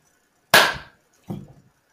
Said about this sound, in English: That was a wake up chime right there. Is that what that was? Yeah.